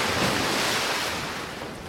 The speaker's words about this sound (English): But then, a splashing sound.